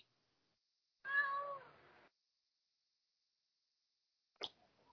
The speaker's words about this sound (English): That is Duchess in the closet, man. She's meowing.